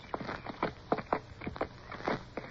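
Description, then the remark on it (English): Horses' hooves clip-clop at a steady walking pace as riders set off at first light, a run of sharp, uneven knocks with no voices over them. “With the first light, we were off again, on horses which seemed wearier than ever.”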